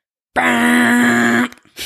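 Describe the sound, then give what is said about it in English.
A person gives one long, loud, steady low honk with their voice, imitating a foghorn, holding a single pitch for about a second before cutting off, followed by a short breath. “I don't know if that's what a foghorn sounds like, but I'm not going to apologize for it.”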